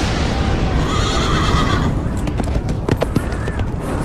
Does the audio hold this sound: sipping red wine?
no